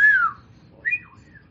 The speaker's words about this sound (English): Wolf whistle. I don't know how to do it.